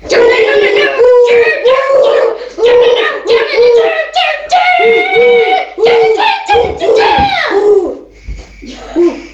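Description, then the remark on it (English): Two people imitate a pigeon's cooing in a harsh, growling death-metal style: a rapid run of loud, strained, rising-and-falling vocal bursts, roughly a dozen, with hardly a pause between them. “And I could use your death metal cooing, …, as part of the song.”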